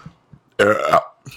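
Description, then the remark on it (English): A single loud, drawn-out burp lasting about half a second with a rough, gurgling tone, framed by faint low thumps and quiet pauses. “I'm sorry. I got to get this burp out.”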